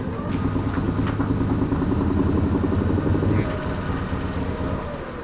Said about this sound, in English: We're very excited. All the Goonj team are here and we're just waiting for their arrival. And I can hear the car. Here they come.